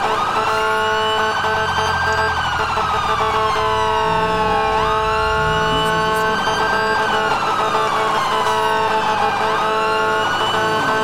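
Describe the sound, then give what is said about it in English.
A loud emergency vehicle siren switched to its alternate tones sweeps up and down in long repeating wails, layered over a steady high tone and a rumbling engine underneath, with no talking. “Now I can activate my alternate tones.”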